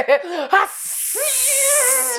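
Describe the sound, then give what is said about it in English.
A person imitates an angry cat: two short vocal yowls, then a long, loud hissing breath with a wavering strained voice underneath, lasting about a second and a half. “Release the cat.”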